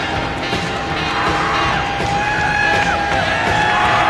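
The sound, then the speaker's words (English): A large crowd at a World Championship Wrestling event cheers in a steady, dense roar that stays loud throughout, with scattered shouts and whistles rising above the noise. “Big crowd on hand.”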